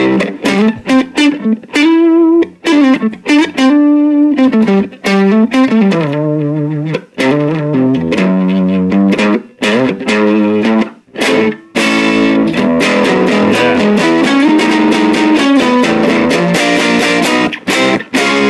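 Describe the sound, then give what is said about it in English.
An electric guitar on its neck pickup, played with a clean tone, plays a run of melodic single notes and chords, warm and rounded with a slight edge, loud and continuous for the whole stretch with no talking. “Can we hear the neck pickup on that?”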